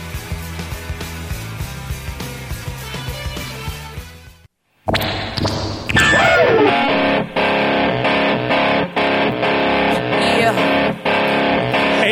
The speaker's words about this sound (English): cool bass distortion pedal with my electric piano on that song.